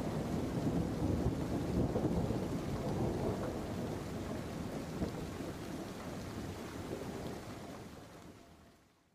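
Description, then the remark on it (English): A thunderstorm roars with heavy, steady rain and deep rumbling thunder rolling throughout, loud, fading away at the very end. No one speaks. “Because right now, there's a thunderstorm going on. The sky is falling.”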